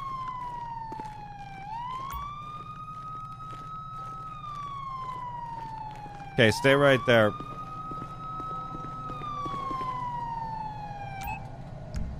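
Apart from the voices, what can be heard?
police car siren wailing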